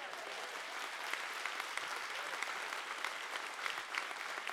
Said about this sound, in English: Come on, if you believe that, let's clap our hands.